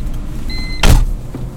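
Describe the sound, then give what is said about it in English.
Vehicles rumble as they drive onto a ferry all around, with a brief rising motor whine and a sudden loud clunk partway through over a steady low engine drone. No one speaks. “All right, we are now on the ferry. You can hear vehicles coming on all around us here.”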